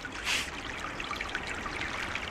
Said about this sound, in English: And it always seems like there's water running out of here.